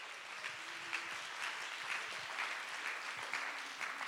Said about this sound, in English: Clap your hands and give God the praise right now.